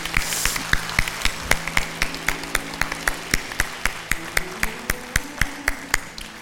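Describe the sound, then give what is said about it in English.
A crowd claps in a steady, even rhythm, about three sharp claps per second, over soft sustained musical tones, giving a big hand to God after a prayer. “Would you give a big hand to God?”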